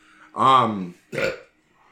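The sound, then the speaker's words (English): A loud, drawn-out deliberate belch with a strong tonal rumble, followed by a shorter second belch, both clear with no talking, made by a person imitating the sound of a dog magically appearing. “That's the sound the dog makes when it appears. I'm a belch wizard.”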